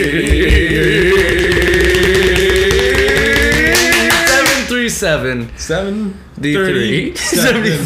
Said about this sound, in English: Snapping. All right, snapping time. Snapping time. That's all we do.